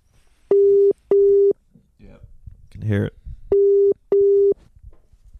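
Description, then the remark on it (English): A phone call placed over a Bluetooth connection sounds its ringing tone loud and steady in two double-burst rings, with a short spoken remark squeezed into the pause between them. “Oh, actually, we should call her on the fucking phone.”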